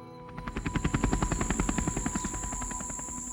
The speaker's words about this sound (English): Wow, I flew that helicopter pretty well.